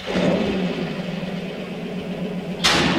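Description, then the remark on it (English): A car engine runs loudly and steadily, a continuous rumbling drone with no talking, then a sudden sharp burst of noise near the end as it revs. “How are we going to get the engine back together?”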